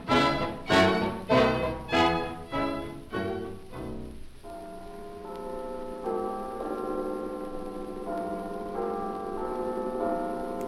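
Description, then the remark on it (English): A clock chime strikes midnight in a quick run of about eight bright, ringing bell strikes, each fading briefly, then gives way to a steady sustained tone of held musical notes. “Listen to the midnight chime.”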